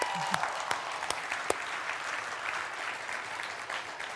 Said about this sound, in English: Now we can clap for what's happened, okay?